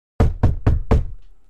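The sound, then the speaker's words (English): Four firm knocks on an apartment door, evenly spaced with a slight pause before the last, loud with a short thudding decay and no voices. “I know who it is before I even look at the door.”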